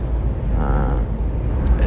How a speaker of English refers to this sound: It's early. It's early in the morning. We're in the car on the 580. We're on the 80, really. Truth be told, about to get on the 580.